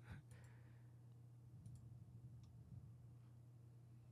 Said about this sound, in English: I'm clicking the images.